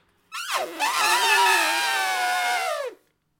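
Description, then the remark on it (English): A person imitates an elephant's trumpet: one loud, brassy, buzzing blast that swoops down at the start, then holds a strained, harmonic-rich tone for over two seconds before cutting off. “You make an elephant sound.”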